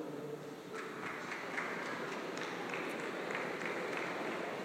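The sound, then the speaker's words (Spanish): A crowd applauds steadily, a dense, even wash of many hands clapping at once with no voices standing out, holding at a constant loud level throughout. “Si vas a aplaudir, apláudele al Rey.”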